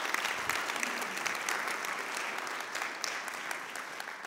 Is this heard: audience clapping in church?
yes